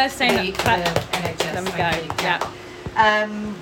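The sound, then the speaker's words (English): A few people give a 'Thursday night clap', clapping their hands in a quick, uneven patter of sharp slaps for a few seconds, with voices talking and murmuring over the applause. “If we could have a little Thursday night clap.”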